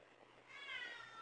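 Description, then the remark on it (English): A single drawn-out meow from Sam, a pet cat, rising in pitch and holding steady, moderately loud, with no talking over it. “Sam's agreeing. The kitty.”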